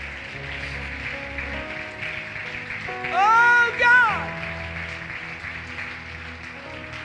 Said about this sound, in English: Come on, clap your hands and praise him for it.